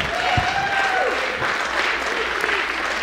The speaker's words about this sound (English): This song. I know you ain't applauding my singing ability, but you applauding the words.